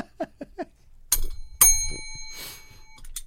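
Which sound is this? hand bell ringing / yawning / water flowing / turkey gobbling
hand bell ringing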